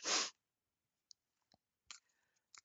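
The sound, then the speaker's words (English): A short rush of a large deck of cards being shuffled, followed by a few scattered soft clicks and taps of cards settling. Nobody speaks. “So I'm just shuffling, and this is a bigger deck. There's a lot of cards in this deck.”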